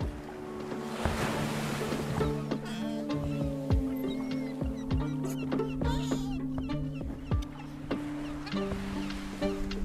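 A sturdy motorboat chugs steadily away from the pier at Belderig, Ireland, out through ocean waves toward the Stags of Broadhaven, its engine hum droning beneath the splash and rush of surf, with wind buffeting the microphone and occasional thumps as the hull meets the swell.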